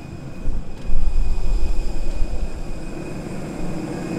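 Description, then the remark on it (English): A steady, rumbling drone of aircraft engines and ventilation fills the space, with a thin constant whine above it, as people get off a plane and walk into an airport in Namibia. No one speaks. “All right, we are off the plane walking into the airport.”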